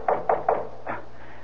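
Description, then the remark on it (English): Three quick knocks on a door in an even rhythm, then a softer fourth knock after a short pause, moderately loud with no voices. “Answer, but don't open the door.”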